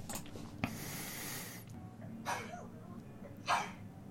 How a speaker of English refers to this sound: I'm just enjoying it because someone's sneezing, you know?